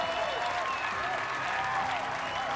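A crowd bursts into loud, sustained applause, dense clapping filling the whole moment with a few excited voices and whistles mixed in.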